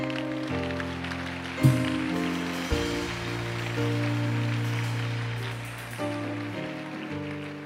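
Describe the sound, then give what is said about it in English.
An audience claps steadily in praise of God, in a dense, continuous wash of sound, with sustained instrumental chords shifting underneath and no voices standing out. “If it is clapping, then do it well.”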